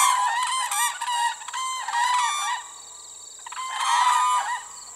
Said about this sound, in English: Here, one of the world's most endangered birds, the whooping crane, comes to dance, nest, and raise its young.